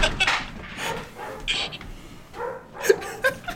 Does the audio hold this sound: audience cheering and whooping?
no